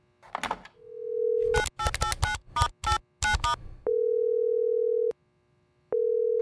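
A steady telephone dial tone hums briefly, then a quick series of keypad beeps dials out a call to México, followed by two long, even ringing tones separated by a pause of silence.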